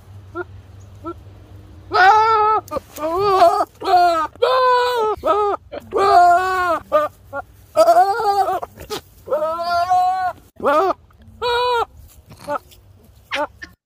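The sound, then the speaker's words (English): A goat screams over and over, loud wavering bleats coming in quick bursts for about ten seconds, with brief gaps between each cry. “We need a goat, bro.”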